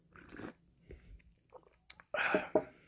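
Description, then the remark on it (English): Mouth sounds of someone sipping hot Bigelow lemon ginger tea: a few soft, brief noises, then a louder breathy slurp and a short follow-up sound near the end, with no talking. “Had to get a sip of that beautiful lemon ginger tea.”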